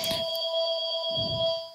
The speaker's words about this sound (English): Fucking phone. Fucking phone. The phone has become as much a character in this podcast as, let's say, the ant, a minor but irritating character.